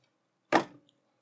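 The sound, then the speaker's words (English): A single loud, sharp knock on a door, a hard wooden thud that rings out briefly and fades, followed by a faint little tick. No one speaks. “If someone's knocking on my back door... Well, you just gotta trust... You just gotta read the knock, then.”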